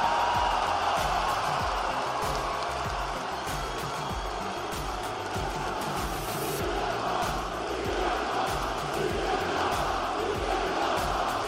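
A large crowd of about 11,000 in an Anaheim arena roars and cheers continuously as Cody Rhodes brings CM Punk to the ring after Raw went off the air, a dense, loud wall of voices that holds steady for the whole stretch with no single speaker standing out.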